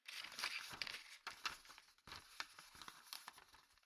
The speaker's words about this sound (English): A rustle.